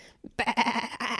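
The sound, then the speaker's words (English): As part of a game of animal sounds, a person imitates a sheep with a single wavering "baa" bleat, fairly loud, lasting under a second after a brief quiet breath. “Sheep.”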